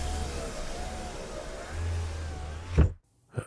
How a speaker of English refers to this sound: The engine stopped.